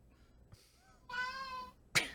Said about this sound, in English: Our cat is just really excited about these suggestions.